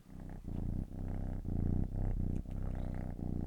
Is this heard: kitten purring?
yes